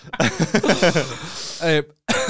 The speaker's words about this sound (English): It was themed, sorry for coughing down the mic. It was themed on, I apologise for coughing, I just have no qualms about eating the Snickers.